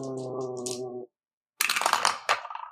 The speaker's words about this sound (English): Go ahead and roll 2d6 plus the number of conditions you got marked.